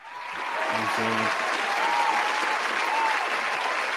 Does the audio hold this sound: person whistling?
no